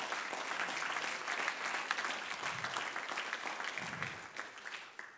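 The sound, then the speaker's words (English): An audience claps their hands unto the Lord in a dense, sustained burst of applause that stays steady and loud for several seconds, then begins to thin out at the end. No one speaks. “Would you clap your hands unto the Lord, all you people?”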